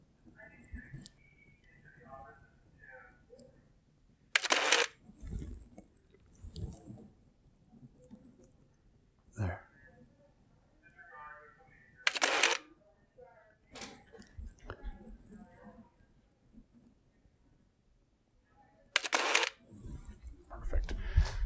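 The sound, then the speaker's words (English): A film camera with an f3.5 lens, loaded with ASA 400 film, clicks its shutter about four times at irregular intervals, each a sharp mechanical snap, with faint murmuring and handling noise in between. “Now we are really going to suffer with the film camera because it's only f3.5 and the film that's in it is ASA 400.”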